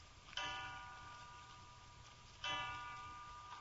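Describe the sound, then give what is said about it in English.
A clock strikes three o'clock with deep, resonant chimes, two slow strokes heard about two seconds apart, each ringing out and fading over a quiet low hum. “3 o'clock.”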